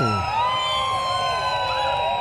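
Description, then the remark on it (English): The siren of a St. John's Ambulance Service rainbow ambulance volunteering at Pride wails steadily at moderate loudness, its tones gliding up and down over a busy outdoor background with faint crowd noise. “So if anyone can hear a siren, don't worry. It is the ambulance for the St. John's.”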